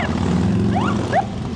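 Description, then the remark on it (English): A motorcycle in Korea is started with a key and revved: the engine rumbles with a deep, steady throb, and two quick revs rise in pitch over the low drone, the second slightly louder than the first. “Turn the key, rev it up, and get ready for a ride.”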